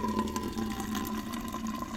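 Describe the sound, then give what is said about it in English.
A steady stream of urine splashes continuously for the full two seconds as someone pees on a friend's jellyfish sting at the beach, fairly loud, with a faint hum underneath and no voices. “And nothing I like more than whipping it out and peeing on someone's leg at the beach.”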